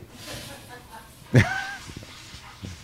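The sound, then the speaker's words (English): An 11-year-old Bichon Poodle Maltese dog named Gracie gives one brief, high-pitched whimper with a short whiny tail in a hotel room, with faint murmuring voices in the background. “That's an 11-year-old dog.”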